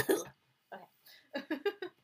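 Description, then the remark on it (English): A fit of coughing: a single cough, a short pause, another, then a quick run of four harsh coughs in succession, with nothing else in the background. “But let me just cough in your ear a little more.”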